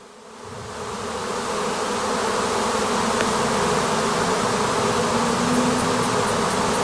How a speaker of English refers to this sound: Now I've got a short little video here. So this video happened this year in my garden, just to show you what happens when bees swarm.